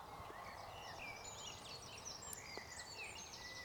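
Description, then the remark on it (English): A busy chorus of garden birds calling and chirping at once in Bob's garden at 5:30 in the early morning, many short high twitters and whistles overlapping steadily, soft over a quiet outdoor background hush. “There's a great deal of bird activity in Bob's garden.”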